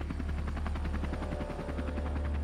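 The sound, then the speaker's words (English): A firefighting helicopter's rotor chops loudly and steadily overhead, its rapid rhythmic thumping layered over a constant low engine roar, continuous with no voices, as it fights a fire burning on both sides of the road at the top of Frontier Hill. “They're actually fighting it with the helicopter.”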